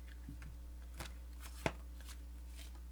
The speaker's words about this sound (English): I want you to shuffle a couple more times. Okay, fair enough. I don't feel comfortable with that deck right now.